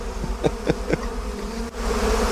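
A hornet buzzes loudly, its droning hum swelling in a few quick pulses before settling into a steady, continuous whine with no voices.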